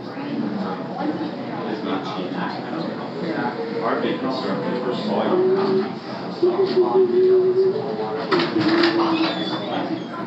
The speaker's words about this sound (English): All right, well, you might get a general idea. It was an operatic humming.